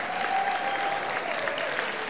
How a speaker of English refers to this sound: So, hey, let's have all the dads. Dads, stepdads, granddads, stand up. Let's pray for you guys real quick. Give you guys a round of applause.